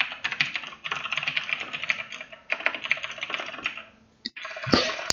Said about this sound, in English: furiously typing to ask that's more me KFC. That was me on accident. I thought my microphone was muted.